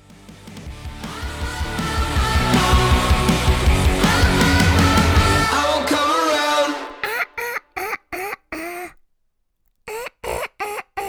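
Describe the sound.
A loud song with singing plays for about seven seconds, then breaks into a rapid string of short, choppy vocal bursts that sound like duck quacks, with one brief silent gap.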